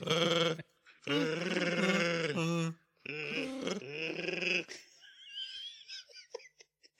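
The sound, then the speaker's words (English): A man imitates a Wookiee growl on an inhaled breath, three long rasping, warbling roars in a row, loud and strained, trailing off into breathy wheezes and faint gasps. “The trick with the chewy thing is to breathe in.”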